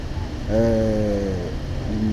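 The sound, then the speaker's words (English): Inside a moving DART city bus in Dar es Salaam: a steady low engine rumble fills the space, and a droning tonal whine rises over it for about a second before fading back into the hum. “Here's our journalist on the bus in Dar es Salaam again.”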